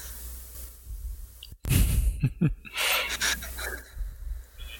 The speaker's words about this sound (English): Panting.